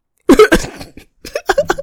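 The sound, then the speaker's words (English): Loud throat clearing: a pair of harsh coughing bursts, a brief pause, then a quicker run of short, rasping, voiced grunts. “It's one of those where, like, I'd have to wait till I'm getting off the train or the bus and I, like, just clear my throat.”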